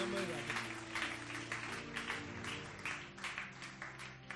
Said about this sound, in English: And let the people of God say, amen. Amen. Oh, give the Lord a mighty hand clap.